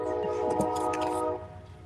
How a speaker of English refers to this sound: Letting the train go through.